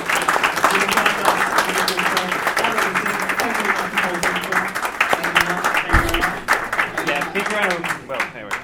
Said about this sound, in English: Big round of applause for these guys. I think that was really interesting.